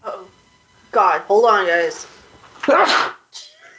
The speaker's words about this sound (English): I'm going to sneeze.